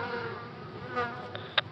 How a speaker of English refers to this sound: It looks like some honeybees are coming in. Wait, they're fleeing. The killer bees. They're coming in. And they're flying in formation?